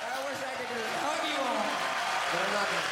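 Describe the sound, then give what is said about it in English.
An audience applauds steadily throughout, a dense wash of clapping mixed with cheering and shouting voices that holds at an even loudness from start to finish. “Just put applause over applause.”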